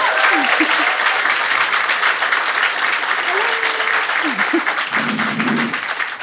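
An audience claps steadily in a dense, sustained round of applause for about six seconds, with a few faint cheers and whoops rising above the clapping.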